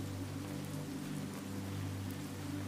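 Steady rain falls in an even, continuous hiss, with a low rumbling hum running underneath. No voices; the sound stays at a constant moderate level throughout.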